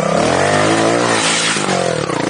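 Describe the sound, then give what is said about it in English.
A two-stroke motorbike engine revs in a parking lot with a loud, buzzy drone throughout, its pitch climbing a little, then dipping and surging again near the end. No one speaks. “You know, just that one bike echoing through the parking lot, just putt, putt, putt.”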